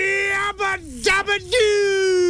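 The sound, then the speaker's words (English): A voice imitates a quiz buzzer, holding a loud, steady nasal tone that briefly dips and warbles twice before settling back into a long sustained drone, alone. “This is your buzzer.”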